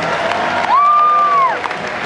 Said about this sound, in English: The Universal Studios team has been awesome, so round of applause for those guys.